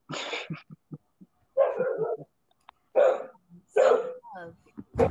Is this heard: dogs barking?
yes